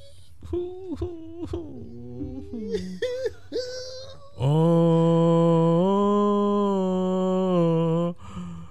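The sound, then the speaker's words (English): A child in an audience whimpers in short, broken sobs at the end of a match, then breaks into a long, loud sustained wail lasting several seconds before cutting off abruptly. Clear, with no other voices. “The kids crying at the end was a nice touch.”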